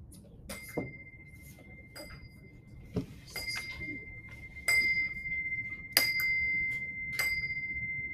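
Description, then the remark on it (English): A clock strikes twelve with a series of bright, metallic strikes about a second apart, each leaving a sustained ringing tone, moderately quiet over a low background rumble. “I've been asleep just before the clock started to strike.”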